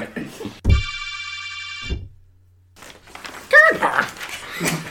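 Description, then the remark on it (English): A heavy farm door opens with a loud clunk, lets out a steady metallic screech for about a second, then thuds shut, leaving a low hum; people talk before and after. “That was the door. Oh. Okay. That's what my door sounds like. It's a farm door.”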